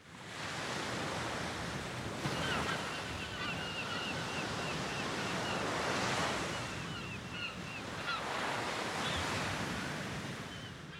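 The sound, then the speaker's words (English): Ocean waves, used as a sound effect at the beginning of a song, wash in continuously with a broad, hissing roar, swelling and receding in slow surges over several seconds, with faint bird-like chirps high above and no voices. “Sound effect, all these waves at the beginning, you don't find this excessive at all.”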